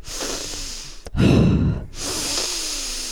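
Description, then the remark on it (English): A voice imitates an old man's heavy, raspy breathing: a long wheezy inhale, a short pause, then a loud gusty exhale, without any talk. “But there's an old man that, bless him, goes in and reads his book every day. He's a heavy breather.”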